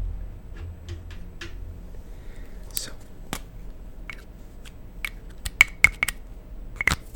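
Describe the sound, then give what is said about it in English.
A highlighter is handled close to the microphone, giving sparse, irregular crisp clicks and taps over a low steady hum, with a quicker cluster of sharp clicks toward the end. “So right now I am putting my highlighter like really close to my mic.”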